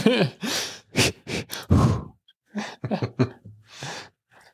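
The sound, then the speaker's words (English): Loud rhythmic breathing in a hotel room, with heavy breathy exhalations and sharp gasping inhales, coming in quick bursts separated by short pauses, partly voiced like sighs and grunts. “This is 45 minutes of rhythmic breathing.”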